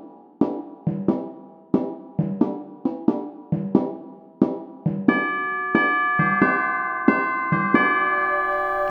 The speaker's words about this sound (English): Question four then on the unusually high timpani and tubular bells.